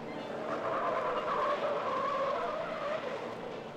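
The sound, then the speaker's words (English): Car tires squeal steadily through a turn, a sustained high-pitched screech lasting several seconds at fairly constant loudness, with a faint engine rumble underneath and no voices. “She can corner like a motorcycle.”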